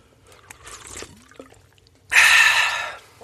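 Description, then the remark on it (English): Someone takes a drink of water for a dry throat: a brief soft liquid sound and faint swallow, then a loud breathy exhale or gasp of relief, with no talking. “I got to get a drink.”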